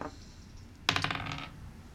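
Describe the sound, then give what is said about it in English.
Dice clatter across a hard tabletop as players roll initiative in a tabletop role-playing game, a quick burst of bright, rattling clicks lasting about half a second, then settle into quiet. No one speaks. “And we are going to roll initiative.”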